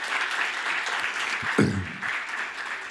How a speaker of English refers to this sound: Let's give these both, all three, a big round of applause. Thank you.